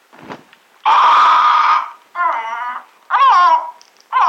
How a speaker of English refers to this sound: We crouched there behind the curtains, watching the parrot. He protested a while at being so rudely disturbed by some unseen agency, then climbed about the cage with claws and beak, pecked at crumbs, and appeared entirely normal.